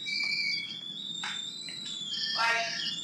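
A voice mimics a whistling tea kettle with a shrill, sustained high-pitched squeal that wavers and rises for about three seconds, with brief breathy bursts mixed in.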